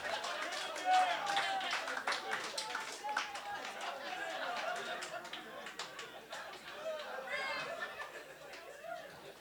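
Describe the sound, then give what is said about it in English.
A live audience boos the host loudly and continuously for kicking a contestant out of a debate, a dense mass of voices mixed with scattered claps and chatter, sustained across the whole stretch with no single voice standing out. “You guys asked, let them both win, and then you booed me”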